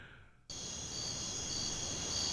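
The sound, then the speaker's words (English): After a brief near-silent moment, a dense chorus of crickets cuts in abruptly and keeps up a steady, shrill, continuous chirping until the end, with no talking. “You know, another place where they're going to be, you're going to be hearing crickets, is the Made in America Festival.”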